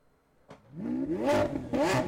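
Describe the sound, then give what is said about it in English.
A car engine revs up sharply after a brief click, its pitch climbing in rising harmonics, then surges again in a second loud, powerful roar. “I just put car noises and then recorded myself saying the fast minute.”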